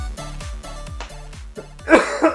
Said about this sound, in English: Getting all the coughs out now because I am sick. So I apologize to everybody if my voice cracks.